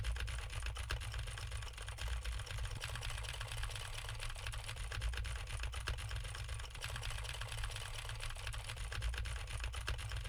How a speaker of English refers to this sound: And now I am typing on the Music Villa MV3 while typing on a keyboard with the exact same switches to see how much of my voice versus how much of the keyboard it picks up.